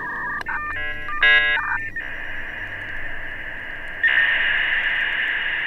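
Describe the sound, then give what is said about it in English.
A dial-up modem handshake over a phone line: a short burst of stepped dialing tones, then a steady high carrier whine that jumps louder and hissier partway through, all crackling with static and no voices. “And those were in turn connected by phone lines and modems.”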